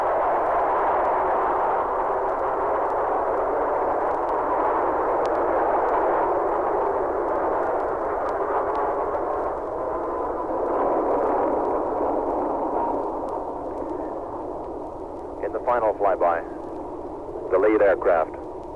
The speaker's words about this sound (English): Now, the flyby, 50 airplanes, 50 jet planes.